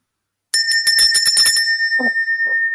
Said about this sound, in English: Should I ring the bell now? Yeah. Yeah.